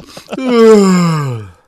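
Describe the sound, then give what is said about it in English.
One loud, drawn-out yawn: a quick breathy intake, then a long voiced groan that slides steadily down in pitch before trailing off. No talking. “Yup. Yawn. But today, there will be no yawning”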